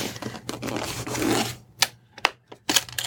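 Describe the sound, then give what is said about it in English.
A handbell carrying case is opened: a stretch of scraping, rustling handling, then three sharp, separate clicks like latches snapping, with short quiet gaps between them. “So you have your little case here. Could you open that up and sure.”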